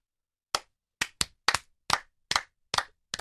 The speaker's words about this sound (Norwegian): Da klapper vi for hverandre.